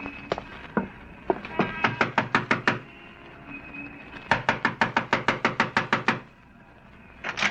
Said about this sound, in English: Yeah, stop your knocking. I'm sorry. Your doorbell seems to be out of order.